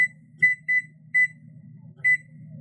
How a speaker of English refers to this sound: So let me set my timer again for another 30 minutes.